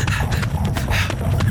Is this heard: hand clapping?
no